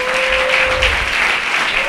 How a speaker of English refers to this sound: Thank you. Fill the room with your applause. Come on, get extroverted.